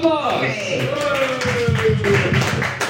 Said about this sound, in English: Applause! Yay.